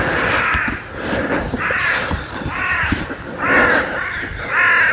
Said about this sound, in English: Crows awakening